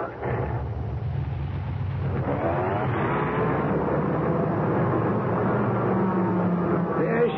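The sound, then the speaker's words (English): A car engine rumbles, a steady low, throaty drone with rising harmonic tones as the car is slowly backed out of a shop, continuous throughout with no voices. “Well, we gotta give Ben his car. Let me back it out the shop.”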